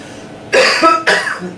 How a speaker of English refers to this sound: Let's try the coughs again. Bigger cough.